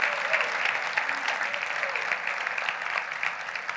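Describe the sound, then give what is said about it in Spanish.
An audience applauds God, steadily, dense overlapping claps forming a sustained, even wash of sound that holds at a fairly constant level for several seconds without any speech over it. “Podemos darle otro fuerte aplauso a ese Dios.”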